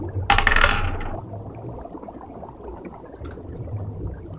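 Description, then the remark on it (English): A short, bright clatter of birthday dice rolled across a hard tabletop for a survival check, loud for about a second and then settling, followed by quiet background noise and a faint click. “I am no pressure, Dangerlings, but I'm rolling my birthday dice given to me by Candace.”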